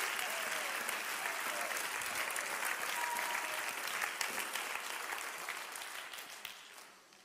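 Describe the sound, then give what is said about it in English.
A crowd claps their hands for the Lord, steadily and densely for several seconds, a broad wash of overlapping handclaps that holds strong and then fades out at the end. No one speaks. “Somebody clap your hands and give the Lord.”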